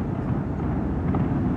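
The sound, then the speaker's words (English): Fireworks rumbling in a steady, low, booming roar with no clear separate bangs, fairly loud and continuous throughout, with no one talking. “Fireworks or some shit.”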